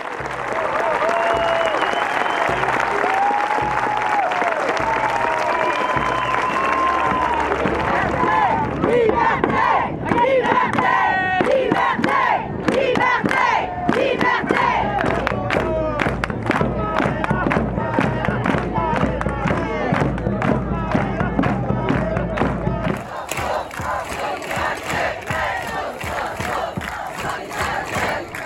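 A large crowd at a protest march in Quebec heading toward the Abraham Field chants and cheers loudly, with rhythmic shouting and bursts of clapping and whistles rising over a steady roar of many voices.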